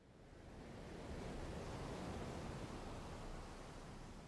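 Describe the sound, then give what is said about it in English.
Steady roar of surf mixed with gusting wind on an open shore on a cool, windy morning, a broad continuous wash that swells slightly in the middle and never lets up, with no voices. “No red knots have arrived yet on this cool, windy morning, but conditions can change on a dime here.”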